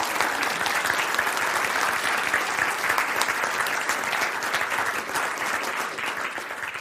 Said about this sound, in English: So let's just have one big round of applause for all these amazing people.